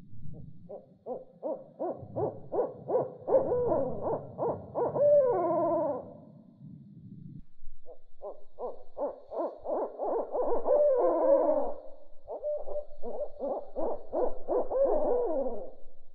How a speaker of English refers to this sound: And after that, there were like three owls that started talking to each other. hooting away. They do this really weird hooting thing.